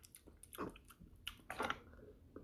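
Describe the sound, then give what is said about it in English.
A dog named Bella licks a bowl with soft, wet smacking and lapping sounds in irregular bursts, two of them fuller and louder, all fairly quiet and with no talking. “licking a bowl? It's Bella. I can hear the bowl going.”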